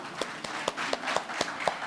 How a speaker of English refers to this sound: We should also praise where we have to give some praises. Okay, so once again, let's clap for our government.